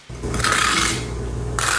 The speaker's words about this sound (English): The sound is the end of life run of a washing machine.